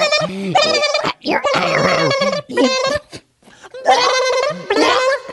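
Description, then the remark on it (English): A person vocally imitates a blue jay gulping down a worm, with a series of loud gobbling and squawking noises broken by short pauses, full of harmonic, fowl-like warbles. “It's got the thick, wide, fat, wet sound of that big old worm being eaten by a flesh bird.”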